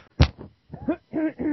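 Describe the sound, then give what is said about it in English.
A single sharp, loud cough bursts out, followed by a few softer voiced throat sounds and murmurs. “But I wanted to talk a little about sorry, now I'm going to cough.”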